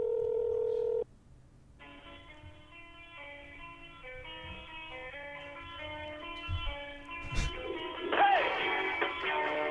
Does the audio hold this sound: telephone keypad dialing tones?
yes